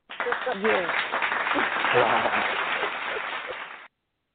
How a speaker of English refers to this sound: Yeah, let me go ahead and throw a hand clap for myself.